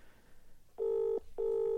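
A telephone ringing tone heard over the line as a call is placed to a man: two identical steady, buzzy bursts, each about 0.4 seconds, separated by a short gap, fairly loud against a quiet background with no talking.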